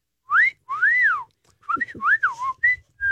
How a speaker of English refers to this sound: Can you whistle? I can. Give it a shot. I have to lick my lips first.